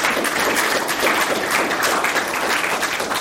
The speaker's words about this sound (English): Okay, let's give a round of applause to our guests for getting through that lightning round.